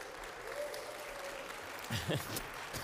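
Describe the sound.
An audience claps in a steady, dense patter of many hands throughout, and a man's voice starts speaking over the fading applause near the end. The applause greets a preacher before he preaches.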